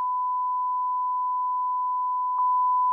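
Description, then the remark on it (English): A steady, pure censor bleep tone sounds continuously, with a brief click near the end where it jumps slightly louder, like two bleeps joined back to back. No voices are heard. “There's two beeps.”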